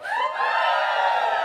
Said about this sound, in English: Give me a cheer if you had a wee.